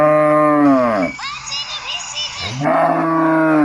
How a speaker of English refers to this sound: now here comes the sound of a cow in a field.